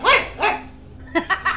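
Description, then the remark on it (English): A dog, Squelch, barks five times as it comes running over to sniff at underpants: two fuller, higher barks at the start, a pause, then three quicker, sharper yaps. The barks are loud and stand alone with no talking. “Squelch barks and comes running over and starts sniffing at the underpants.”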